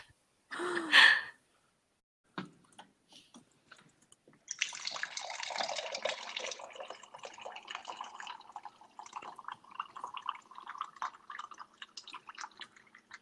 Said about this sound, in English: I really hope that's not someone peeing. Nah, it's me getting water.